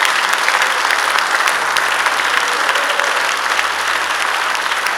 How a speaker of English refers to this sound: I want to give God a wonderful round of applause.